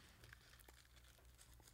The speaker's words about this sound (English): What are you crunching here? What is this? I found a rolling paper from one of their podcasts.